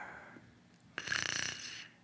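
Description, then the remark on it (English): A single raspy snore, a rough rattling inhale of close to a second that rises abruptly out of near silence and then fades away. No one speaks. “I hear a mysterious snore, too.”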